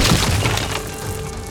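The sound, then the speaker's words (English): A heavy crash as the Minotaur's horns drive into a wooden floor, with wood splintering and cracking apart in one loud burst that fades into a lingering rumble. No voices. “At the last second, Theseus rolled to the side and the Minotaur crashed to the ground.”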